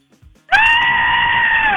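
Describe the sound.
A person performs a scary horror-movie scream on request: loud, sustained and high-pitched, starting abruptly and holding steady for over a second, with a strained bleating quality that resembles a goat.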